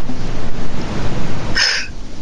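One short, sharp, fairly loud sneeze bursts out near the end over a steady rushing background noise like wind or surf; no one speaks.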